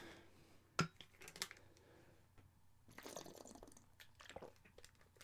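Someone takes a sip of water: a sharp click, then soft wet slurping and swallowing noises, quiet, with no talking.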